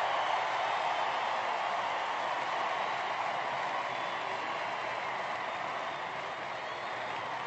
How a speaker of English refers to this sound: And Bama's offense comes out. The fans standing and cheering.